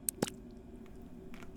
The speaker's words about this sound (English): And suddenly, you see the ceiling of the classroom begin to drip.